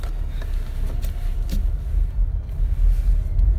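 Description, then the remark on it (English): A steady, heavy low rumble fills the cabin of a moving car, constant, with faint brief ticks and road bumps flickering over it and no voices. “it's because I'm driving in my car and I don't have notes to look at.”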